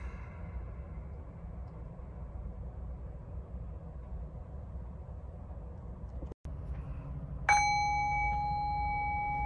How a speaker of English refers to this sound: and I'll ring the bell.